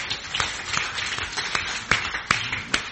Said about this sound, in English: Don't forget it's Mother's Day, is it? Give your mums a round of applause.